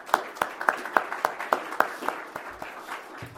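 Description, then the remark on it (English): Hands clap in a steady, quick rhythm, sparse and fairly quiet, a small audience applauding at a World Affairs Council speaker program, with the beats thinning out toward the end and no talking. “Let's give both of them a round of applause if we may.”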